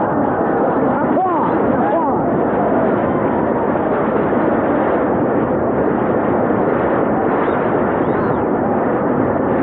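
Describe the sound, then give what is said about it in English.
A crowd applauds steadily, a dense, even roar of clapping that holds at full strength for the whole stretch without fading, with a few faint cheers or whistles mixed in early on. “Applause!”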